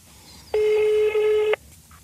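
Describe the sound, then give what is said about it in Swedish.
A single steady electronic telephone tone, like a ringing signal on the line, sounds clearly for about a second against a quiet background, with no talking, as a call is placed to a woman's phone number. “Här har du hennes telefonnummer, kid. Så ringer vi henne.”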